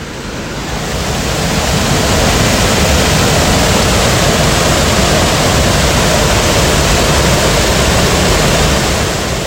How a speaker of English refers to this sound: Not that far up ahead either, because it's not much longer that we start walking that we hit a gigantic stream. This is basically a river at this point. It's not a stream anymore. And it is rushing.